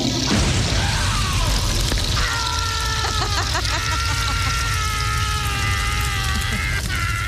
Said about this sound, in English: After seeing this story, I mean, what I think this sounded like, by the way, with the toilet bursting into flames.